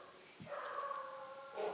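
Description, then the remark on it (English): Dogs barking in a drawn-out, almost howling way, with sustained tonal cries that swell louder toward the end, with no talking. “I think your dogs think so.”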